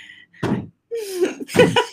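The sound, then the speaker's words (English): Two or three dull thumps as kids knock on a door, separated by short pauses, with a brief high-pitched child's voice sounding between them. “Can you hear my kids? Knocking on the door.”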